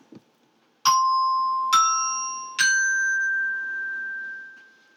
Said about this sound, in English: And colored resonator bells.